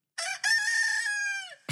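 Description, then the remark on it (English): A single loud rooster crow rings out, a short opening note followed by a long, drawn-out cock-a-doodle-doo that tapers off, with a brief thump at the very end. “That's not an eagle. On so many levels, that is not an eagle. It's the closest thing I could find.”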